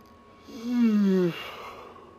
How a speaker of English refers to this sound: Again, everyone, my apologies for my yawning. I just had a long day at work.